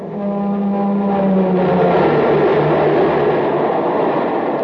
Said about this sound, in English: Man, that train is really traveling now because it's supercharged with super fuel.